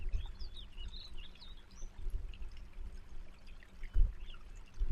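A creek flows steadily with a continuous low rush and trickle, while birds chirp and warble faintly in the background.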